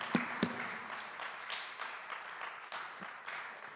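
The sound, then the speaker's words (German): Audience clapping, a steady, dense patter of many hands with a couple of sharper claps near the start, fairly soft throughout and with no voices over it. “Ja, da kann man klatschen.”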